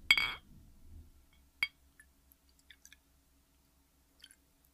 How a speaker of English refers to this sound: But let's go ahead and let's get some ASMR. Let's pour that delicious drink.